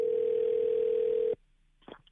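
A steady telephone dial tone of an outgoing call from the New Country 103.1 radio show hums loudly for over a second, then cuts off abruptly into near silence, followed by a brief faint click or blip.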